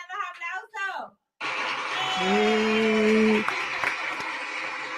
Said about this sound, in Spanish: Un aplauso al diácono por estar con nosotros.